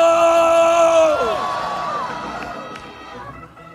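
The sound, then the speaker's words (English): A church audience screams together at full volume with hands laid on their bellies, a sustained loud wall of voices that breaks into scattered yells and fades slightly toward the end. “Lay your hands on your belly and scream as loud as you can.”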